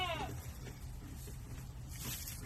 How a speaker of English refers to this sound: Three goats. This is so cute and fluffy.